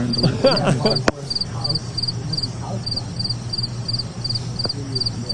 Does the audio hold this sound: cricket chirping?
yes